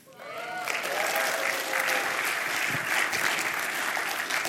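A live audience claps steadily and fairly loudly for several seconds, a dense, sustained patter of many hands, with a brief voice heard at the very start.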